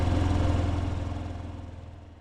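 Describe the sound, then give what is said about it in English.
A food delivery driver's motorcycle starts up and drives away: the engine rumbles with a steady, throbbing pulse, loud at first, then gradually fades as it pulls away. No voices are heard. “And then they all hear the roar of the motorcycle from the Uber Eats driver start up and drive away.”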